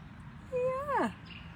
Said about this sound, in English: And also, if I open the door, get some really nice bird noises too around here.